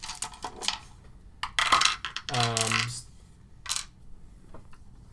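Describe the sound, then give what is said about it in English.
A die rolled for a perception check clatters across a hard surface: a burst of quick, sharp clicks, a brief bright ringing rattle as it spins and settles on a five, then a few faint taps. “God, do you still have that die? What'd you roll?”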